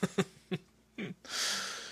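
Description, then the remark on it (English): A few short voiced puffs lead into a long, loud, breathy exhale, like someone imitating heavy, menacing breathing in a Halloween movie parody. “Heavy breathing. Heavy stabbing.”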